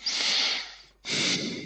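Two loud nasal breaths blown straight into a microphone through the nose, each a harsh airy rush lasting about half a second, separated by a brief pause. No one speaks.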